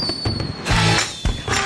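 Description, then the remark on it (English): Fireworks go off in a short burst: a thin whistle, then loud booming bangs with fizzing crackle, two or three explosions in quick succession and no voices. “It's the thing of the weekend. Fireworks and stuff.”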